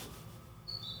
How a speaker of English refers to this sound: Probably hear the bird chirping in the background.